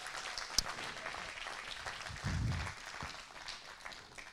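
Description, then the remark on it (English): An audience claps their hands to give the Lord praise, a steady, dense wash of applause with many overlapping claps, a sharp louder clap early on and a brief low murmur underneath partway through. “If you believe that this morning, I need somebody to clap your hands and give the Lord some praise.”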